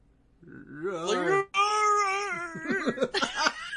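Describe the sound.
A person's voice makes a drawn-out, wavering growl meant as a roar, coming out soft and cat-like, more like a purr or meow, with a short break midway.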